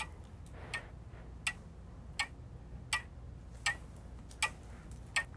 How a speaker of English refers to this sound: I got a clock ticking.